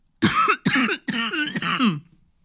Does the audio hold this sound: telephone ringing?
no